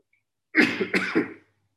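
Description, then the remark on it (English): A raspy cough breaks out in two quick bursts with a throaty rasp, then stops, leaving silence before and after. “See, I'm sorry again for my coughing and everything.”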